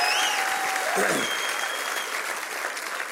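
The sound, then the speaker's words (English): A large church audience applauds steadily at all campuses for the men and women at God Behind Bars locations, a dense wash of clapping that stays loud throughout before easing off slightly at the end, with a few voices and a brief tone faintly underneath. “Can we give the most gracious round of applause at all of our campuses to all the men and women at our God Behind Bars locations?”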